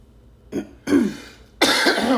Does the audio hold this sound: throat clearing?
yes